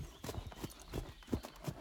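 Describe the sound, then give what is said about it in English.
A horse's hooves clop along at a slow, even walking pace on soft swamp ground, about six hollow knocks with soft thuds between them, steady in loudness and without any voices. “But we must be careful, said one horse, slowly picking his steps.”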